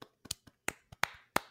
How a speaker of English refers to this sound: Gentle golf clap for Pivetta.